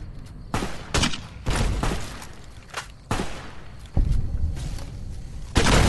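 video game gunfire

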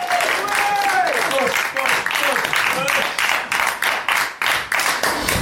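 people clapping and cheering

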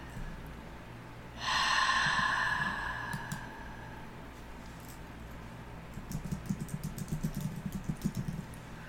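deep breathing

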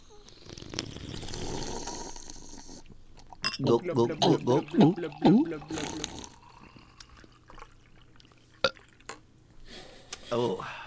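sipping a fizzy drink

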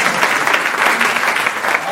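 audience clapping hands

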